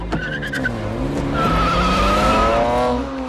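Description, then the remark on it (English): Tires squeal in long, high, wavering screeches over a roaring car engine during a film car chase, a continuous skid that swells loud before easing off, with no voices. “another film that has a lot of car chases going on in it is Ronin”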